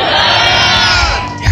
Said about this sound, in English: Your amen is not loud at all.